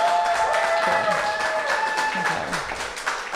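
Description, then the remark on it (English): An audience claps steadily for a few seconds for a person introducing themselves, a dense, even patter of many hands, with some voices and whoops rising over the applause before it slowly thins. “Clap for how well I'm doing, by the way.”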